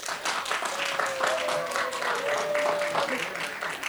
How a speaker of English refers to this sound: please clap your hands.